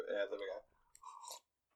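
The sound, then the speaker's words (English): A brief slurping sip of tea lasting under half a second, following a moment of murmured sound, then silence. “Celebratory sip of the tea there.”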